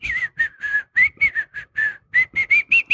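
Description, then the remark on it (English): A person whistles a jaunty, casual little tune of about a dozen short notes in quick succession, clear, with no talking over it. “Give the innocent whistle, you know.”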